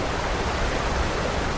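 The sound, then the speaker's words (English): A waterfall on the Passaic River at full volume roars in a dense, unbroken rush of white water plunging into a chasm onto boulders below, loud, with a deep rumble underneath and no voices or other sounds breaking through. “Its foamy cascade plunged mightily into the gaping maw of the chasm, crashing angrily onto the monstrous boulders below.”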